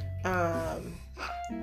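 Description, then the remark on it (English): A single sneeze: a drawn-out, voiced intake of breath with a falling pitch, then a sharp, breathy burst at the end. No one is talking. “bless you. She's awake.”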